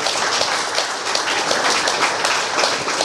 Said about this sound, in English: Yeah, clap it up for that.